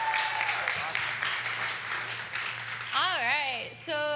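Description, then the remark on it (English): Steady audience applause for a speaker coming on stage at a youth group event fills the stretch, a dense wash of clapping, followed by a rising and falling whoop from a cheering voice and a brief shout at the end. “Let's give her a big round of applause, you guys.”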